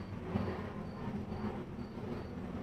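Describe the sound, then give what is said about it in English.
An airplane flying overhead, heard from a porch as a steady, continuous low roar with a broad rushing hiss on top, holding at an even loudness throughout with no voices present. “There's a plane flying over now. Can you hear it?”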